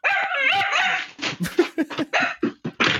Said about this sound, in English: The fuck? My dog just went off. It was little. It's a dog! Yeah. It went off. What was that? Yeah. Was that a dog bomb? Yeah. She does that.